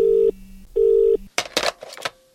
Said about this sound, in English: Right, okay, it's ringing.